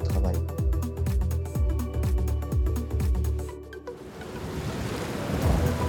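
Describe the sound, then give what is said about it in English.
Deep, rhythmic booming rumbles of thunder with a tonal backdrop give way after a few seconds to a steady hiss of heavy rainfall, with low rumbles beneath. No one speaks. “Often on the road, when it rains, you can't see anything.”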